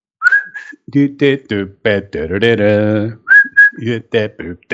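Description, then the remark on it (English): A high, thin whistle-like tone in the opening of a song sounds twice, once at the start and again later, each a short sliding note, set among bursts of voice that continue around and between them. “I don't know that I've ever noticed a whistle or a cowbell”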